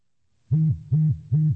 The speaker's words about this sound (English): Now we've got three beeps, which means we're looking at 3 meters away. And this, of course, would be a setting for outdoor when you're walking out, and you might be walking a little bit faster.